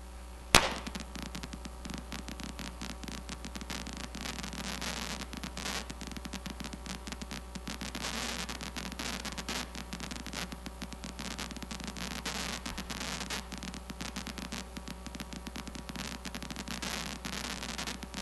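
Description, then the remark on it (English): Amplified activity of a single brain cell in a monkey's amygdala while the monkey is being touched: dense, irregular crackling pops burst over a steady electrical hiss and low hum, spikes firing rapidly in clusters, with one sharp click near the start and no speech. “So before you play it, what you're going to see is somebody touching the monkey, and you will hear the activity of this single brain cell in the amygdala.”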